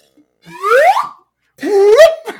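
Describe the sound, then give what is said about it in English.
Two quick slide whistle swoops, each a bright tone gliding upward in pitch before wobbling off, separated by a short pause and heard alone with no talking. “I'm on board Team Slide Whistle now.”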